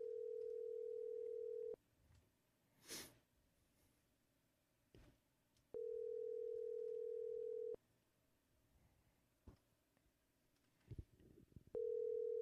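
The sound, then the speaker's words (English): An outgoing phone call's ringback tone purrs in steady two-second bursts separated by about four seconds of quiet, loud, with faint background shuffles and clicks between rings; the call, made at 7 o'clock in the morning, goes unanswered. “He's not going to answer. But I'm going to let it ring to see if it does. See if it does answer. It's still ringing.”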